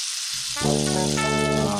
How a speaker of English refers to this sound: Anyway, it's pretty rainy out here. And it's time for me to go before the rainstorm hits. Oh, here it comes.